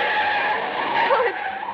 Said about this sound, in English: driver swerved way across the center line as though he were trying to run us down. Then he kept right on going.